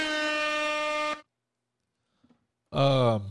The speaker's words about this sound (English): Damn, hit him with the air horns.